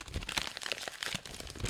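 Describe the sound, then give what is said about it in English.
A crumpled sheet of paper with a nominee's name written on it is smoothed out, crinkling and crackling in a steady stream of dry rustling snaps lasting under two seconds with no one speaking. “We have all of the nominees just written on crumpled up sheets of paper that we decrinkle.”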